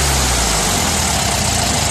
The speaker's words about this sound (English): This is my dryer for the last 4 years. It literally revs up.